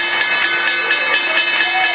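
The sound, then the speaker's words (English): A stock exchange's loud electric opening bell rings continuously with rapid, evenly spaced metallic strikes and a bright, shimmering tone, while faint voices murmur underneath. “There's the opening bell.”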